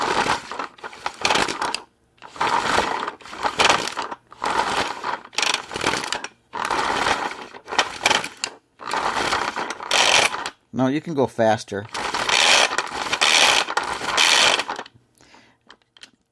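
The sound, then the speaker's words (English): An empty pull-cord food chopper with its cover on, no food inside, whirs in repeated bursts as the cord is pulled and the blade turns. Each pull is a short grinding, ratcheting spin with brief pauses between; about seven pulls, fairly loud, with a brief spoken remark near the end. “Now I'll just pull it like 5 times, just so you can get the idea what it sounds like.”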